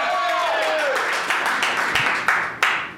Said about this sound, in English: All right, so... best debater of the night, your favorite, audience favorite, round of applause, the whole applause meter, you know how this works, right?